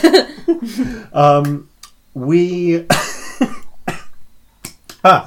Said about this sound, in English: I still have the cough I had from last week, I'm afraid, due to a mild chest infection, which I will be trying to suppress as heavily as possible. Apologies if that breaks out during the show.